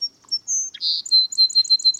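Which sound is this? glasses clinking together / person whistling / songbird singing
songbird singing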